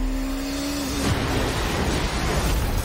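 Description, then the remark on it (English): A steady droning hum gives way after about a second to a loud, dense roar as IndyCar race engines fire up at the Indianapolis 500, the rumbling thunder continuing unbroken to the end, with no voices. “They fire the engines, and suddenly what was an audible hum becomes a violent shriek of thunder.”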